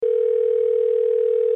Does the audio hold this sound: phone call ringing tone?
yes